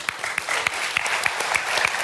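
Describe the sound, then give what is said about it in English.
An audience claps steadily, a dense wash of many overlapping hand claps with sharper individual claps popping out. It is fairly loud and sustained, with no voices heard. “Round of applause.”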